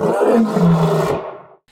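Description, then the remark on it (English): The MGM (Metro Golden Mayer) studio logo lion gives a single deep, rumbling roar, loud, with a rough growling texture that swells and then trails off into silence. “You guys probably recognize that lion roaring.”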